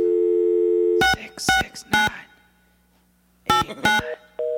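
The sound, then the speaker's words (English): A steady telephone tone gives way to a series of loud, clipped beeps in uneven bursts, a telephone busy signal on the line after a number is dialed. “It's beep. You gotta hang up the phone and then.”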